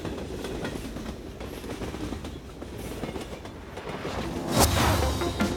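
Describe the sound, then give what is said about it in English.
Train cars rumble steadily along the rails, a dense continuous rolling noise with faint clattering, swelling briefly louder near the end. No voices. “Another bullet hits the train and I see sparks.”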